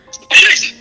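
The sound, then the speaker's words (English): A single sharp sneeze bursts out after a brief inhale, loud and airy, fading quickly into quiet with no talking. “Bless you.”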